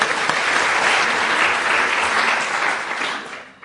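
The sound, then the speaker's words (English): An audience claps steadily to welcome a panel speaker, a dense wash of applause that holds even for several seconds before thinning and fading out at the end. “So please applause and welcome.”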